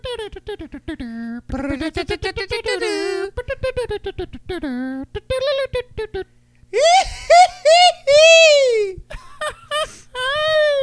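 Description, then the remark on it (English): A voice imitates a Mexican grito: a wavering, warbling laugh-like cry, then a run of loud, high-pitched yelps that swoop up and down, alone. “Those stupid little laugh yells they do.”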